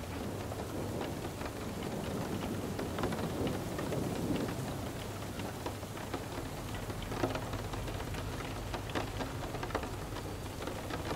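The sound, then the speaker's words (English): Steady rain from a storm outside, with a deep rumble of thunder rolling underneath and scattered droplets tapping sharply throughout. Nobody speaks. “Every roll of thunder distracts and reminds you to let go more in reassurance.”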